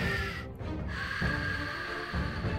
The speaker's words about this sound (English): And right now, I hear an alarm. Can't very well do a show if there's an alarm going off.